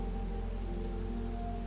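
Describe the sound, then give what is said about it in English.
Steady rain in Slovenia, seen from the top floor of a building through screen-printed bird-safe glass, patters continuously on a surface, a dense even hiss with a low, constant hum underneath. No one speaks. “The view out is obscured by rain and the screen-printed bird-safe glass.”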